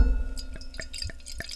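Sparkling wine, a Pet Nat (pétillant naturel) made by the méthode ancestrale, pours into a glass, a soft trickle dotted with crisp, irregular fizzy pops and clinks. Fairly quiet, with no voices.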